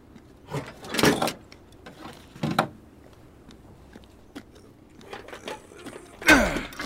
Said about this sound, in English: There's a shipping door over here. Might be able to drive in after all. Does it open? It will. Just give me a second.